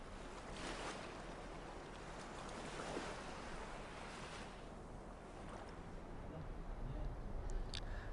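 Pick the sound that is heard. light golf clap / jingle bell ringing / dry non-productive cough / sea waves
sea waves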